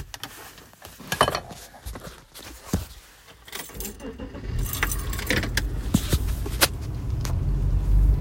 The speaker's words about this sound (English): Sorry, I'll keep the car on because I don't know when this is transmitting, if it's when the car's on or off